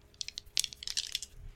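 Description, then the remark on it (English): A quick flurry of small hard clicks and rattles as two six-sided dice tumble and clatter across a table, landing on two ones; brief, with no voices. “I rolled two ones.”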